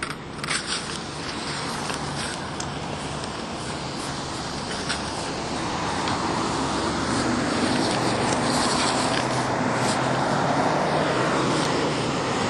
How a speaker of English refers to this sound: That truck almost came.